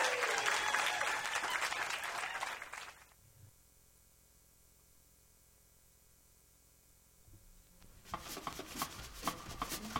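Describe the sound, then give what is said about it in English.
A crowd applauds with dense, loud clapping that stops after about three seconds, leaving a quiet gap before the clapping starts up again near the end. “Can you just all kind of, like, give me a round of applause on how much we're going to fight with her?”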